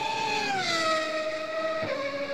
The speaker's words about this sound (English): A little double clutching, having some fun here in this Porsche.